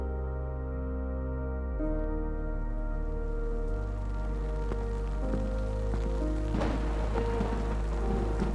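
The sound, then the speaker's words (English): Steady rain falls in a constant hiss, with scattered drops pattering and growing denser and louder toward the end, over a low sustained drone. “I'm so sick of this rain.”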